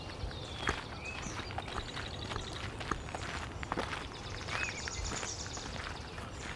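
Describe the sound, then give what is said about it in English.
Steady footsteps crunch along a path through a marsh beside a meadow at an even walking pace, with birds chirping and calling softly in the background. “Let's head down this path through the marsh here.”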